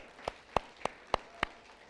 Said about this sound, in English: Is that good news? That's something to clap about.